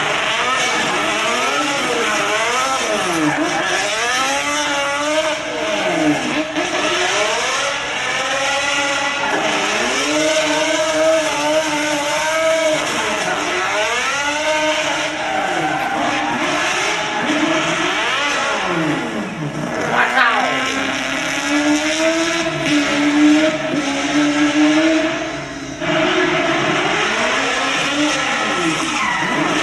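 A four-rotor rotary engine revs loud and close, its buzzing pitch climbing and dropping in repeated throttle blips throughout, with no talking over it.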